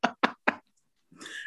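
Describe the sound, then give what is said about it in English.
Three quick, evenly spaced, solid knocks on wood, followed by a short pause and then a rising hiss of background noise. “he's knocking the noise in, and then he's like wading in onto Shona's situation.”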